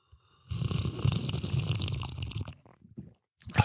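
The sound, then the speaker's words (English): A loud fart, a rumbling, sputtering low blast lasting about two seconds, then a brief pause and a short final puff. No one speaks. “Do you like that I'm so comfortable in front of you that I can just fart audibly?”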